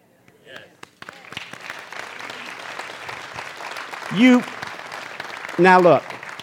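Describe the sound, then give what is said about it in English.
A church audience breaks into steady, sustained applause to welcome new members into the audience, with two loud whooping cheers rising above the clapping near the end. “You cheer a lot louder than that for the Chiefs.”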